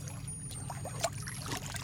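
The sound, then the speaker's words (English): Water flowing and trickling steadily, heard while climbing the steps up a hill to a monkey temple, with a continuous low rumble underneath and occasional brighter splashes, no voices present. “As I climb the steps to the top of the hill where the monkey temple stands, I can hear the sound of flowing water.”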